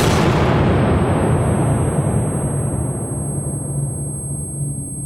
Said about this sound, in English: There was a moment of silence, and then a gunshot.